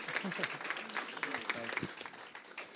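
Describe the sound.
An audience claps steadily in a dense, continuous round of applause at moderate volume as two people come forward for an interview, with a few voices speaking over the clapping.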